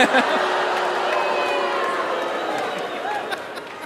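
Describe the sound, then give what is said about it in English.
A live game-show audience erupts in loud, sustained reaction, a dense wash of many voices shouting and jeering together for several seconds, full, with no single speaker standing out. “I love playing to this crowd. Very strong opinions.”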